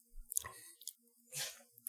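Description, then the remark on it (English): Quiet wet mouth sounds of someone sipping a mixed cocktail, a twist on a Long Island iced tea made with Rockstar energy drink, a short slurp early on and a longer airy sip near the end, with no talking. “Yeah, I'm going to sip on this.”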